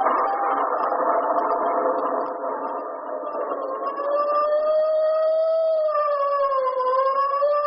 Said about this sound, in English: A stormy night in early spring.